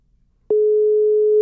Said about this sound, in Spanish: Vamos a hacer un llamado a Fernández a través de un método subóptimo, que es una comunicación del WhatsApp